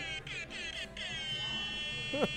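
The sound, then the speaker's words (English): An air horn sound played from a phone app blares loudly and buzzily for a couple of seconds, its harsh tone stuttering briefly at the start, with a short vocal sound near the end. “He literally has a air horns app.”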